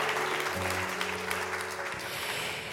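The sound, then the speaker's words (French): Sustained audience applause for authors Muriel Barbery and Alice Ferney at an Actes Sud event, a dense crackle of many hands clapping at steady volume throughout, with a low tonal hum running underneath and no voices heard. “Peut-être qu'on peut commencer par les applaudir chaleureusement.”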